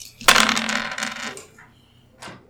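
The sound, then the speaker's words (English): Seven dice, rolled for an attack in a tabletop game, rattle and clatter across a hard tabletop in a dense burst of clicks for about a second, followed by one more single knock shortly after. No voices. “That's 7. No, what? 7 dice.”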